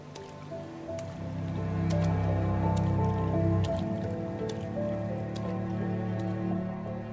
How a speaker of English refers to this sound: I could only wave at my mother as he carried us through the low tide to the ship, his boots splashing through the murky water.